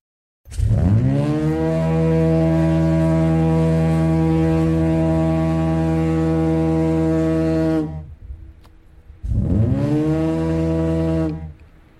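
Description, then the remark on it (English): A deep, powerful compressed-air lighthouse foghorn in Cornwall, the kind sounding in Marconi's time, blasts in a long sustained note of about seven seconds, falls silent briefly, then sounds again for a shorter second blast, loud and resonant. “So when Marconi was here, that is the foghorn he would have heard? Oh, yes. Oh, yeah, in Marconi's time, oh, yes. That's a compressed air, not like the new things today.”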